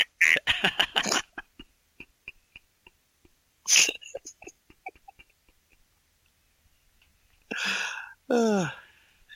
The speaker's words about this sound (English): Your goose is angry about it.